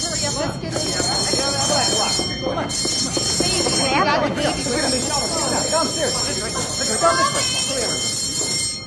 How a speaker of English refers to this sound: I'm going to sound the alarm and get everyone into the shelter.